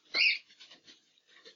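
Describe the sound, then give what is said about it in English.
Birds chirping: one loud, shrill squawk at the start, then a string of softer, brief high chirps scattered over the rest of the moment, with no one talking. “Settle down, birds.”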